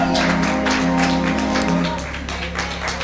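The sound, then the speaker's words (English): An audience at a morning service claps together as hand clap praise to the Lord, in a dense, steady patter that softens slightly toward the end, with a low sustained hum beneath the applause. “Come on, let's put our hands together and give the Lord a hand clap praise.”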